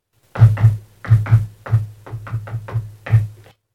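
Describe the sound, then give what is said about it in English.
A series of about ten firm knocks tapped out in a distinct rhythmic pattern, grouped in pairs and quick runs, fairly loud with no talking. “I would argue that, I mean, if you just do a rhythm where it's like, oh, what's this? What's the name of this knock?”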